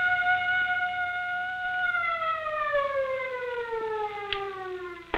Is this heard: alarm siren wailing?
yes